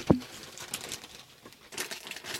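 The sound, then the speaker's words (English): A bag of sea salt potato chips crinkles as it is pulled open, irregular bright rustling bursts after one sharp thump at the start, with no one talking. “I'm going to put my mic down and open the bag.”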